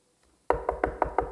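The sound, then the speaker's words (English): Six firm knocks in a quick, steady rhythm, as if on a wooden door, fairly loud, starting after a brief moment of quiet with no voices. “Oh, stop that knocking.”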